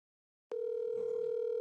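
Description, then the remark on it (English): After a moment of silence, a telephone dial tone switches on abruptly and holds as one steady, unbroken hum, loud, with no voices. “Oh, boy, do I have a phone call ready.”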